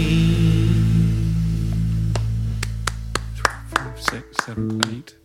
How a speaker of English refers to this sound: 5, 6, 7, 8, 9 claps there. Oh, nine claps.